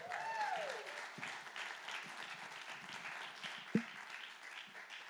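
A church crowd at Relevant Life Church applauds steadily for about five seconds to welcome a pastor to speak, a dense wash of many hands clapping at an even level, with a brief rising whistle or cheer at the start and one sharp thump midway.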